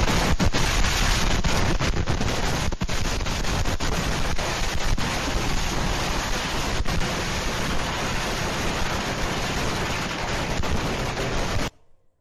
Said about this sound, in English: That's a lot of fireworks. My goodness.